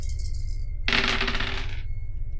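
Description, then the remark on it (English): Four dice, three positive and one negative, are rolled for a check in a tabletop game, clattering and rattling across a hard table in one quick burst of tumbling clicks lasting about a second, then settling into quiet. “3 positive. 1 negative. Will you roll for me?”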